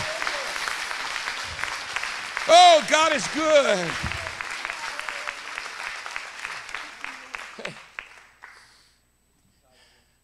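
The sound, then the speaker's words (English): An audience breaks into sustained applause as a hand clap of praise, a dense wash of many hands clapping that swells and then tapers off, with voices calling out over it before it fades to quiet. “Give him a good hand clap of praise in the house.”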